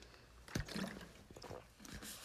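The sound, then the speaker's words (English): Someone drinking Poland Spring water from a plastic bottle in a recording studio in Far Rockaway, New York: a sharp crinkle of the bottle, then sloshing water and a few soft gulps and swallows, with no talking. “I'm drinking the water right now.”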